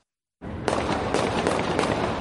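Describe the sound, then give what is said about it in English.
A burst of gunfire erupts in downtown Louisville during protest unrest: several sharp cracks in quick, irregular succession over a loud, noisy outdoor background, beginning abruptly after a moment of silence. “You could hear the gunfire erupt in downtown Louisville.”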